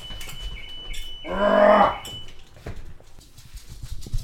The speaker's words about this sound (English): Yeah. You fucking dog.